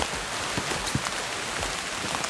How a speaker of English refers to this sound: Wish it wasn't raining.